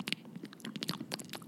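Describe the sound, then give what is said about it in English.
A person eats food at the microphone: wet, crunchy chewing bites repeat in quick, irregular bursts, loud and intimate, with no talking over it. “I'm eating on the mic.”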